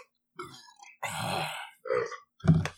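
burp

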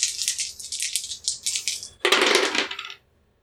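three dice being rolled

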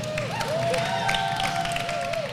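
audience applause

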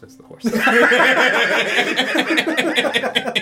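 horse neighing

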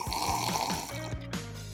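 sipping a drink

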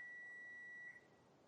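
microwave oven beeping

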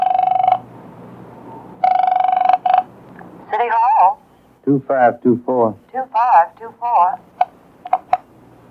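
telephone being dialed

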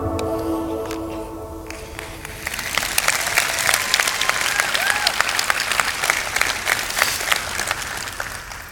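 audience cheering and applause

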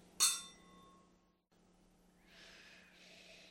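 wine glasses clinking

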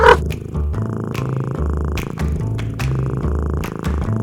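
cat purring

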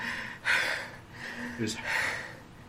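heavy breathing

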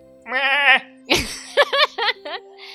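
goats bleating

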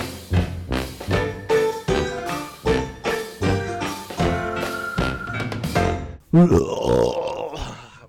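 burp

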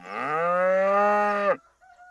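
cow mooing

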